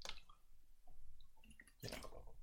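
Wet slurping and small liquid clicks as someone sips a drink of water, with a louder gulp-like burst near the end and no talking.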